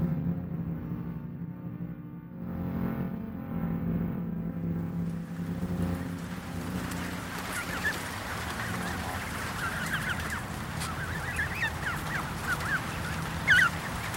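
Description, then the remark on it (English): Geese honk repeatedly, their calls growing busier in the second half, over a steady low engine-like rumble. No one speaks. “It is a very dangerous idea to pick a fight with an adolescent goose.”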